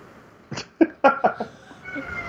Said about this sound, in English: Oh, sorry. Got the cat in my way here. Cat's trying to answer.